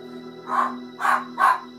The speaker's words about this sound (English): He'll bark at you in a minute.